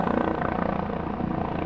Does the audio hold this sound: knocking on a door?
no